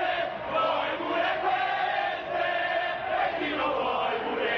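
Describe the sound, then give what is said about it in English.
A large crowd shouts and jeers at Bettino Craxi as he comes out, throwing coins at him, in a dense, continuous roar that swells and dips slightly, many voices overlapping loudly with no single speaker standing out. “When he came out, the crowd started throwing coins at him, shouting, "Bettino, do you want these too?”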